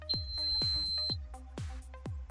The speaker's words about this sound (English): I heard a beep. Yeah, I thought that was my computer messing up. It was at that moment we realized what that beep meant.